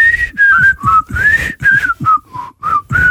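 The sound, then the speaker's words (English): A person whistles a cheerful TV theme tune, a series of short bright notes stepping up and down in a bouncy rhythm, with breathy gaps between phrases. “I'm having trouble whistling for some reason.”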